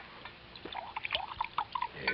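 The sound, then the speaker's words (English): Liquid trickles and glugs into a glass in a quick run of small bubbly splashes and rising tones, fairly soft and heard alone with no talking. “Look, give me a little more sip of that, huh?”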